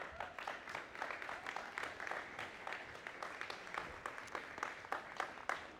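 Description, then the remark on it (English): A crowd applauds steadily for several seconds as two guests come up to join the speaker, many hands clapping in a dense, continuous patter with no voices standing out above it. “Won't you guys clap as they come up here?”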